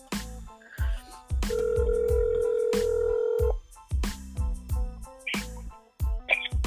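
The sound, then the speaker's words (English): A single long ringback tone of an outgoing phone call to a friend, steady and fairly loud for about two seconds, sounding over a thumping beat with bass and percussion playing throughout. “Let's see if she answers the phone.”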